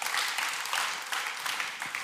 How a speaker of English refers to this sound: And so 5 weeks from today, on October 2nd, we are going to launch a second service at Discover Church. All right, you can clap for that.